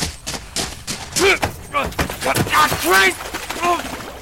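A burst of heavy, loud wooden thumps and knocks as a person hits a raft's wooden gunwale hard and is grabbed to keep from falling into frigid water, mixed with strained grunts and shouts from several people.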